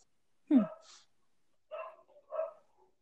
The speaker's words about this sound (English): Oh, your dog's barking. Yeah, that's Max. I love Max. Yeah, he's a little pain sometimes, though. Still a good boy. Oh, Max.